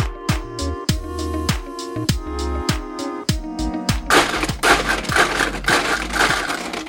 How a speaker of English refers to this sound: Extra crunchy, the ice. I'm joking. But it's a great drink. Fernet Branca.